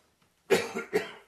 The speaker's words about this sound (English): Pardon me. I'm in recovery mode. I'm still hacking and coughing a bit. But God is healing me and restoring me. Pardon me.